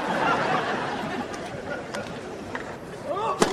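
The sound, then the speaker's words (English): A tennis first serve by Nick in a first-round match: a single sharp racket thwack rings out near the end, over a steady murmur of crowd chatter and scattered snickering laughter. “This is the first serve.”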